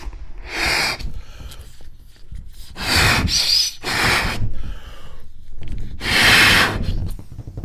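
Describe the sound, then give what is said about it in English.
Four strong, breathy puffs of air blown into a balloon, one for each of 4 points scored in a game, each a loud whooshing gust with short pauses between them and a faint rubbery rustle underneath; the balloon is then about 20 inches. No one speaks. “4 puffs on the old balloon.”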